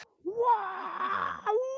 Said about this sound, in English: Wow! It's my 200 viewer scream.